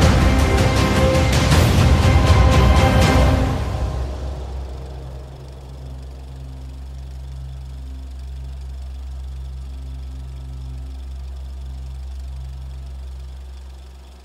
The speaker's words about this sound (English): The limousine speeds off under the railway bridge, heading as fast as it can to Parkland's hospital.